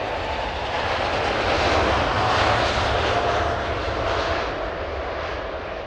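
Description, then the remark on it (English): A steady, loud engine roar from a plane flying to Toronto, a broad droning whoosh that swells slightly in the middle and then eases, with no voices present. “With HBO and CBC on board to co-produce, the kids got on a plane back to Toronto and began putting together their pilot.”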